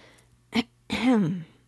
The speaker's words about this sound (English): The orange girl, behind her little counter, coughs.